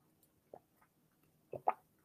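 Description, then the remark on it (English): Quiet sipping of tea: a soft slurp, then a pause and two quicker wet sips close together, each short and faint, with no one talking. “So hold on, another sip here before I continue.”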